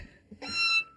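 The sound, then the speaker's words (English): A single strained, high-pitched meow-like squeal from a human voice imitating a cat, lasting about half a second, with a thin, wavering tone that swells and then cuts off abruptly. “Oh, that's a dying cat.”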